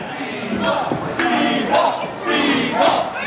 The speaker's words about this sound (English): And now chanting for Speedball. Crowd get behind.